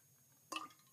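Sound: pouring or drinking water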